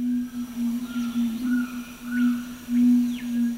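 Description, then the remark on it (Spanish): A male red-ruffed fruitcrow (yacuturo), a black, crow-sized bird with a bright red chest, gives its display call in a mountain forest in northeastern Argentina: a deep, sustained humming, a low droning tone pulsing unevenly in loudness for several seconds, with faint higher chirps and whistles in the background. “El yacuturo macho lanza su llamado de presentación.”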